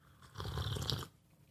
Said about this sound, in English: hold on, I'm gonna take a sip of my coffee real quick.